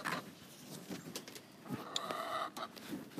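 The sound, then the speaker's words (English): Six chickens cluck and squawk, with short irregular calls overlapping in a busy flurry, one higher sustained squawk standing out near the middle. “That's my chicken, if you're wondering. Well, my chickens, 6 of them.”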